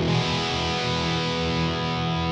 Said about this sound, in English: So what we've done is we have cut the thing in half and we've made a very weak example of a guitar pickup. So it doesn't sound very good. So let's hear that.